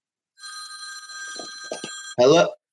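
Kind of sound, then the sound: household object, phone ringing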